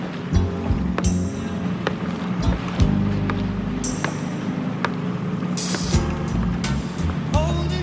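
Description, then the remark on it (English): Water laps steadily against a boat moored at a marina, with a low rumbling drone underneath and occasional soft knocks and creaks of the hull. “they have a kind of confrontation on the boat, so Crockett has a boat down the marina”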